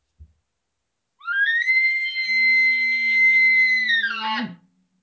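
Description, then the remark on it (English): An imitated elk bugle: a rising, high-pitched whistling scream held for about three seconds over a low growl, then breaking off in a quick downward drop. Loud and alone, with no talking. “if you're out there learning how to bugle”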